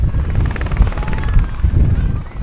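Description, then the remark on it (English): A helicopter roars, its rotor beating in a heavy low thump with a whining engine hum above. The sound is steady and loud throughout as it powers up for takeoff. “it's time for him to take off and head back to the North Pole.”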